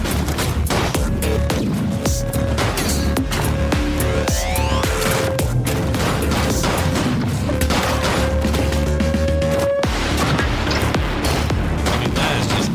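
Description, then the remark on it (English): Video game gameplay with a driving soundtrack: loud, dense music with sustained tones runs throughout, overlaid by rapid bursts of gunfire and crashing impacts, with no one talking. “This is just some gameplay and the music that goes with it.”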